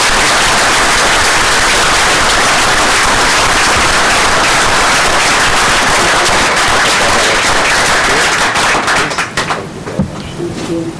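A crowd at Alameda Hospital breaks into sustained, loud applause for a nurse, a dense wash of clapping that holds steady for several seconds before thinning out near the end.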